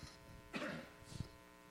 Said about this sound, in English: Satan would use that buzzing and that humming noise to distract you from what God has for you this morning.